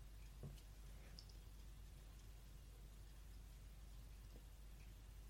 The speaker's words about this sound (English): Maybe it's the rain.